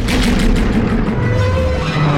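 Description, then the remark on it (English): Sebulba's pod racer engine from the pod race sequence roars loudly, its deep drone pulsing with a steady thumping rhythm and a slight rise in pitch throughout, with no voices present. “Sebulba Sebulba's, by contrast, is big and loud and thumping, which warns all others in the race to get out of its way, or else.”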